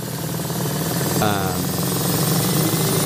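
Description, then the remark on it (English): A steady, loud mechanical rumble and rattle, like a churning engine, with a brief warbling, wavering tone that swells in about a second in, a sci-fi time machine sound effect. “All right, so that was the time machine.”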